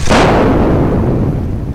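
A power cable shoved against a ship's steel bulkhead sets off a single loud, sharp blast that cracks out like a thunderclap, then rolls into a deep, rumbling decay that fills the low end for over a second without fading to silence.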